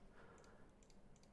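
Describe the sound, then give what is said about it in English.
Faint computer keyboard clicks come in three quick pairs at a steady pace, light against a low background hum, with no one talking; the keyboard is registering a button as held down. “Man, my keyboard thinks that it is holding a button down.”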